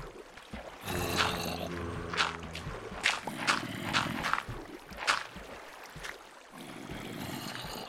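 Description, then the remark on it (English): Water rushes and pours in, flooding, with a steady churning wash broken by several sharp splashy bursts and a brief ringing tone early on. Moderately loud, with no one talking. “Now you shall all flood! You shall all flood!”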